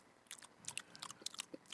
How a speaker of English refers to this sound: Eating some pepperoni and cheese. Hope you guys enjoyed us chewing.